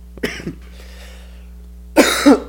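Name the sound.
coughing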